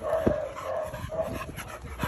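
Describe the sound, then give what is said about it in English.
A female service dog in training in Nova Scotia whimpers and whines in high, drawn-out tones, broken by a couple of short, sharp barks, with no talking. “She trains service dogs for people around Nova Scotia.”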